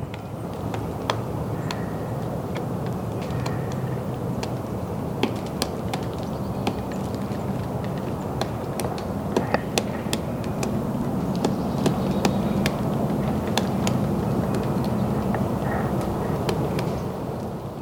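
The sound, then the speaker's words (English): A pileated woodpecker pecks at a tree at Griffey Lake in Bloomington, Indiana, with sharp, irregularly spaced knocks, sometimes in quick pairs, over a steady low rumble of background noise. No one speaks. “In case your ear isn't totally tuned to the different kinds of peckings of various woodpeckers, that was a pileated woodpecker.”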